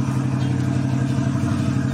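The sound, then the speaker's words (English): A loud engine rumbles steadily with a heavy low-pitched drone and mechanical clatter during a dyno test at Moore Speed Performance in Columbus, Ohio: Vicky, a former cop car converted to drag racing, with a lifted chassis and over 100 pounds of off-road tires in front. No one speaks. “And that's Vicky, a former cop car that's been converted to drag racing, even with a lifted chassis and more than 100 pounds of off-road tires in front.”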